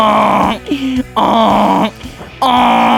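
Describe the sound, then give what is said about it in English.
A person imitates the bray of a neighbor's donkey: three loud, strained hee-haw blasts with rough, nasal tones, separated by brief wheezy inhales and gulps, no other talking. “I'm going to sit here and make donkey noises.”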